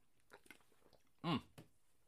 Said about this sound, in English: Let me get one more sippy sip.